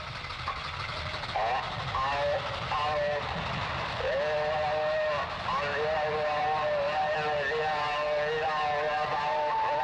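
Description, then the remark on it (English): A train arrives at a station platform in the opening of Tati's film Les Vacances, its wheels or brakes letting out long, wavering metallic squeals over a steady low roar, with a crowd of holidaymakers murmuring indistinctly in the background. “As proof of that, here is a clip from the opening to Tati's second feature film, Les Vacances, where a group of holidaymakers crowd on a station platform in eager anticipation of a train arriving to whisk them away to their destination.”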